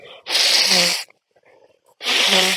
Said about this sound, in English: Oh God, I actually really do need to like blow my nose.